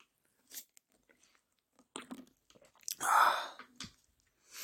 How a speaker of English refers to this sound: Next thing I'm gonna do, I'm gonna take a sip of Rain energy drink.